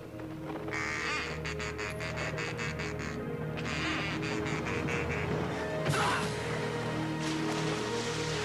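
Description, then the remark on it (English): Ducks quack in quick, raspy bursts, several harsh calls in a row repeating over and over, fairly loud, over a steady humming background. “I like the ducks around here.”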